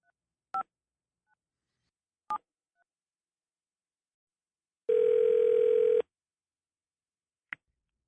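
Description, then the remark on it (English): Two spaced touch-tone dialing beeps as a phone call is placed, then a louder steady tone lasting about a second and a final short click, clear with no one talking. “It's time to make some phone calls.”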